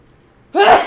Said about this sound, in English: Hold on, I gotta sneeze.